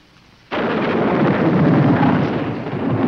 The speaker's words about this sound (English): Such a country. Lightning without rain. Just a summer heat storm, Aresto. Don't let it disturb you.